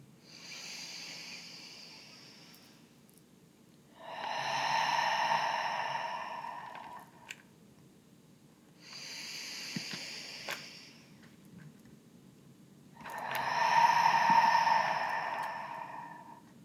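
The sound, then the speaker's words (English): Two slow grounding breath cycles, each a long, airy deep inhale followed by a fuller, louder open-mouth exhale, unhurried with brief pauses between, and no talking. “Three grounding breaths. Take a deep inhale. Open mouth exhale. Two more.”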